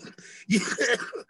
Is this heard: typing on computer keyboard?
no